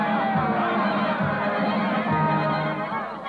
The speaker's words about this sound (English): his painted grin grows broader as he listens to the cheers of the crowd.